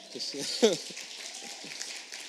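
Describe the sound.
An audience applauds in a steady, sustained round of clapping as a guest comes up to the front, with voices talking over it and a brief louder burst early on.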